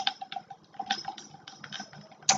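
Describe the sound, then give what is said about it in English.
Ice cubes clink and rattle against a glass of Jack Daniel's Gentleman Jack whiskey in a quick, irregular series of bright little taps, with one sharper ringing knock at the end. No one speaks. “That is ice cubes in some Jack Daniels, Gentleman Jack.”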